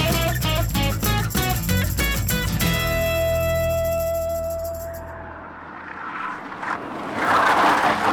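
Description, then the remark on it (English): A car engine roars and surges unevenly over rhythmic music at first, then gives way to loud rushing, scraping noise as the vehicle lurches about, with no one talking. “Oh, jeez, we should learn how to drive. I think I'm car sick.”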